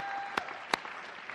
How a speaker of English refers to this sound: Everybody who's here, give him a round of applause.